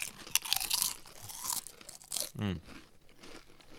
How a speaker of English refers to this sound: So I'm going to eat one of these crisps. Please eat. Yep. Please tell us what you think it is. I'm going to have one too. Yeah, I might too. That's a good crunch.